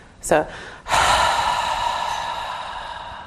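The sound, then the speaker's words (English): During a breathing exercise, a quick, sharp intake of breath, held deep in the abdomen, then a long, loud, full, audible exhale lasting a few seconds, with a faint voiced, sigh-like tone as the breath slowly tapers. “So what we'll do here, at your own pace, you breathe in deeply, hold the air in the abdomen, deep in the abdomen, and you're going to rest your awareness on the breath in the abdomen.”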